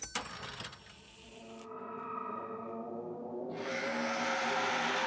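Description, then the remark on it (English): A cash register opens with a quick mechanical clatter, then a sustained, eerie ringing tone swells and grows louder and brighter toward the end, with no one speaking. “Now open the register.”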